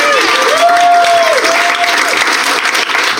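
A crowd claps steadily in dense, sustained applause for a panel member who was given a point, with a brief whistle or cheer rising above the clapping near the start.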